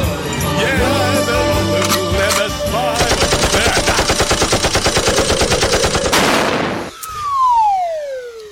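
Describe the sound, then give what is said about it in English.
Rapid machine gun fire rattles in a steady, dense burst for several seconds over a busy, noisy background, then cuts off, followed by a falling whistling tone. “You go up and you shoot them down.”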